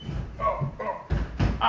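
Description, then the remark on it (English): A sticking bathroom door is shoved and jerked, giving a couple of heavy wooden thuds and a scraping rattle, with short bursts of strain between them. “It's, and the door gets all stuck or whatever. Real sound effects.”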